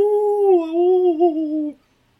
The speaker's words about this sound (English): But then they like hear a howl, and it's I think it was the witch the first time, because it sounded like, you know, mm-hmm. her doing the howl thing. And then you hear like a bunch of wolves in the distance.